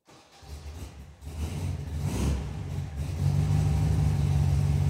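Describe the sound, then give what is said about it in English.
A vintage vanilla-and-mint Beetle car engine revs, its low, throaty hum building in loudness and settling into a steady, rumbling drone, with no one talking. “one vanilla and mint Beetle he drives around sometimes”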